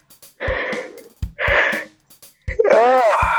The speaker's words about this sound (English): yawning at 6:30 at night